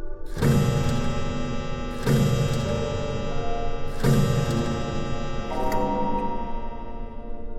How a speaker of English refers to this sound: It's the half-hour chime.